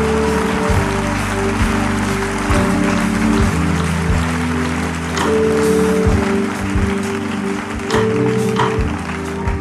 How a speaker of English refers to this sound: Hey, somebody give the Lord a mighty hand clap of praise.